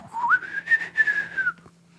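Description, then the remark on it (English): A single human whistle imitates an alien spaceship, sliding upward in pitch and then holding a wavering tone for over a second before cutting off. It is fairly loud, with no talking. “Okay, that was a horrible, horrible whistle.”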